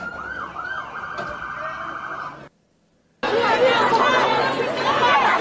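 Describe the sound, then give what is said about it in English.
A wailing siren with background chatter breaks off into a short silence, then loud, dense shouting from groups of people, many overlapping voices, takes over and keeps going to the end, at a street scene with police where objects are being thrown. “Groups yelling.”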